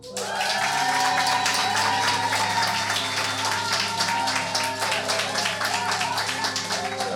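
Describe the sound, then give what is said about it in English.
Sustained applause from a large church audience welcoming a pastor, dense rapid clapping at steady loudness, with some cheering and tonal hum beneath throughout. “She's like, oh, too much noise, crazy.”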